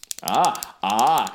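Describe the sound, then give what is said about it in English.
A series of sharp, dry clicks of a pen being clicked repeatedly, fairly loud, mixed with two stretches of sustained voiced sound. “I was going to say, pen clicking.”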